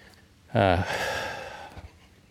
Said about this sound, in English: Pardon the heavy breathing, the early morning lack of coffee.